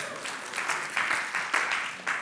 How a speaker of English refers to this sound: The state of Tennessee is building this great building right in the middle of the projects, and they're renting half of it to us and letting us use the community room to do worship services this fall. You should applaud that.